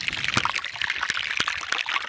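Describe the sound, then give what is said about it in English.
Underwater hydrophone recording of melting glacier ice at the Hans Glacier in southwestern Spitsbergen, between Norway and Greenland: a dense, steady fizzing and crackling, like frying, with scattered sharp pops and clicks breaking through at irregular intervals. No voices. “What does a glacier sound like? This is the Hans Glacier in southwestern Spitsberg between Norway and Greenland.”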